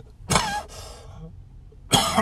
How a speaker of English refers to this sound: Should I edit these coughs out? No, I'm going to keep them in.